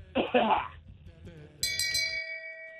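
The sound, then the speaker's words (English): Two quick, harsh coughs, followed after a brief pause by a bright, bell-like chime that rings on and slowly fades. “we who are about to die and cough, salute you.”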